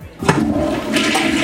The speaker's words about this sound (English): Oh, no, I just flushed my script down. Dang it. I should have thought that out better.